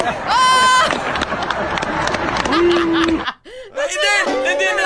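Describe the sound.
A loud crowd at a graduation jeers and boos the valedictorian during his speech, with a shrill whistle at the start, a long low drawn-out boo, then a brief dip before many overlapping voices rise again in waves of booing.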